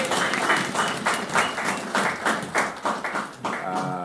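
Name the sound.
audience applause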